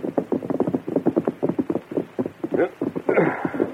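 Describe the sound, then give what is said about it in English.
A steady clatter of hooves as the Lone Ranger's and Tonto's horses clop along a trail at night in a quick rhythm and rein up to a stop by a tumble-down ranch house, ending in a brief snort or shuffle. “The Lone Ranger and Tonto reined up and dismounted.”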